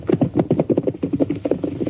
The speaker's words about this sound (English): Something's wrong, Tonto. It doesn't sound like a horse with a rider. Huh? Listen, it sounds almost like a runaway. Him come by us.